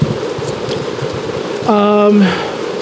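Steady rain hisses throughout, a dense constant patter, interrupted briefly near the end by a loud buzzing, droning tone that lasts about half a second before fading back into the rainfall.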